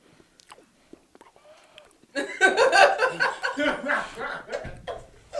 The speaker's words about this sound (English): Let me get a little taste of this, dude. Let me get a little spoonful of that.